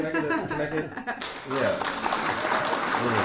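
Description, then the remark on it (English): A group of people clap in a burst of applause for a speaker's improving pronunciation of R's, loud and steady after a brief stretch of voices, with chatter and a bit of laughter mixed in. “Everybody, can you clap for my R's?”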